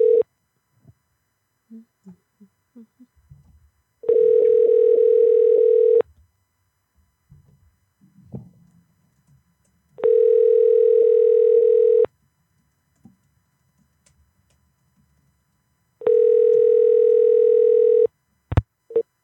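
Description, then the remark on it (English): An outgoing call's ringback tone purrs three times, each steady electronic burst lasting about two seconds and separated by longer quiet gaps, with faint small noises between rings. “I'm going to call him right now.”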